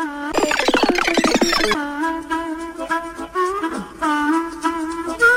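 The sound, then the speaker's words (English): A short instrumental TV theme tune played backwards: a rapid burst of reversed, percussive notes, then sustained harmonic tones that swell and cut off abruptly, with no voices. “Round number four, television theme tunes played backwards.”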